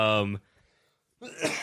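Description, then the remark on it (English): A loud cough bursts out after a short pause, following a brief voiced sound at the start; harsh and breathy, heard on its own without other talk. “sorry, I had to cough one more time.”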